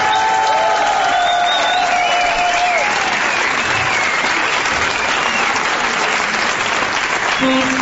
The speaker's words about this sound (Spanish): Señoras, señores, extendemos el aplauso para recibir en este escenario a la dorada trompeta de ….